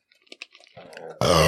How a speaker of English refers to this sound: I love wearing headphones when you burp because it feels like it's like inside my head.